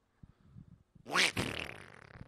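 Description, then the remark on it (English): A duck fart: one loud, raspy burst about a second long, with a rising squeaky edge and a sputtering tail, preceded by faint low rumbling. “Oh, so a duck fart sounds like a human fart. Oh, that's a duck fart?”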